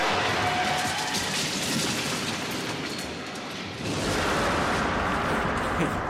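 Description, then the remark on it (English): A car smashes into a building more than eight stories up: a loud, dense crashing roar of grinding debris that dips briefly and then surges again, harsh and noisy for several seconds. “Is that a car? Is that a car in my... Ah!”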